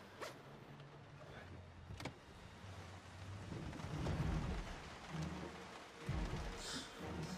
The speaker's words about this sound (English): Oh, it must be so annoying to shoot in the rain or to shoot in fake rain.